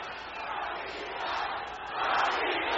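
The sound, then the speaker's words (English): A capacity arena crowd cheers and roars continuously, a dense wall of voices that swells louder toward the end, with no single speaker standing out. “You can hear the response. That's capacity crowd.”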